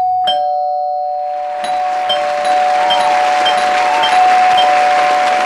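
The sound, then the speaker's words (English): A doorbell sound effect, six doorbells played to celebrate six home buying and selling transactions by A. Cole Realty in the Triangle, rings out loudly with a sustained, ringing chime tone, and repeated bright dings layer over it as a noisy wash swells up behind and holds to the end. “And that deserves, Angie, six doorbells.”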